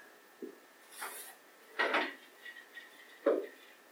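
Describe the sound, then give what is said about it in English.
Someone getting a drink of water: a handful of short, scattered clinks and scrapes of a cup and kitchen things being handled, fairly quiet, with a louder knock near the end and no talking. “I'm just getting some water.”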